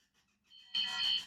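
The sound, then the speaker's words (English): A phone's text message notification tone: a faint electronic chime, then a loud, bright, high-pitched trill pulsing rapidly for about half a second before cutting off. No one speaks. “Oh, text message from Decker's phone. Supposed to mute that shit, babe.”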